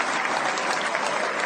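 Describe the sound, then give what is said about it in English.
Steady, dense applause from friends, supporters and some members of the media as Judah Maccabee enters the Great Hall, a continuous loud patter of many hands clapping with no pauses and no voices standing out. “He's being applauded by friends, supporters, and even some members of the media.”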